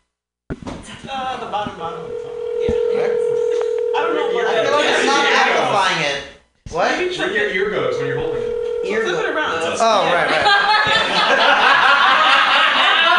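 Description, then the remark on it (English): A steady telephone dial tone hums for several seconds, broken by a few short keypad beeps as someone dials a phone number, then returns briefly, while people laugh and chatter loudly over it. “Who's the one with Seth Rogen's phone number”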